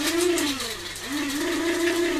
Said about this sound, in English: Speaking of coffee grinder.